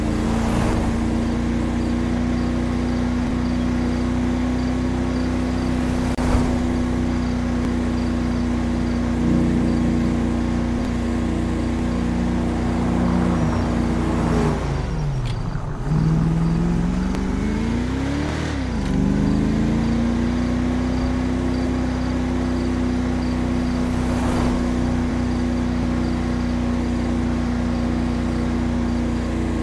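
A police cruiser's engine hums steadily, briefly dropping in pitch as it slows midway, then climbing back to a smooth cruising drone. No voices are heard.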